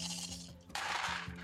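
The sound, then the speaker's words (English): A handful of many dice are rolled for a close combat attack in a game, rattling and clattering in a dense burst, growing louder partway through, with a low steady hum underneath and no voices. “Here we go. It's a lot of dice.”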